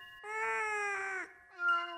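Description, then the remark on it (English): A cat meows twice, a long drawn-out wail that sags at the end, then a shorter, sharper meow after a brief pause. “Cat, what are you doing? Stop walking through the walls.”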